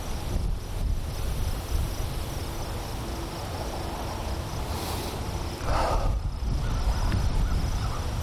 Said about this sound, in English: Anyway, windy again.